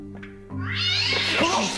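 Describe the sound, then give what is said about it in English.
A cat lets out a long, loud, wavering yowl that rises into a strained, screeching meow, intense, over a low steady hum. “What is up with that cat? Is someone throwing it?”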